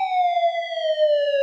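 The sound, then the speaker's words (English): A police siren wails in one long, slowly falling tone, loud and steady throughout, with no voices or other sounds around it. “Paul joins Jen as the sirens grow louder and the flashing lights hit their face.”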